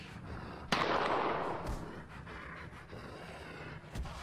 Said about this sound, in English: What are you doing with those gunshots?